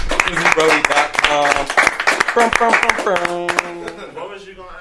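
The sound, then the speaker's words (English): As a show wraps up, a few people clap in quick, uneven bursts for about three seconds while voices cheer and talk over them. The clapping then thins out as the talking carries on. “Man, let's clap it up for that.”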